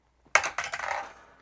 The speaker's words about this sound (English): And now we're going to roll for your song this week. So let's go ahead and get a die, roll it out.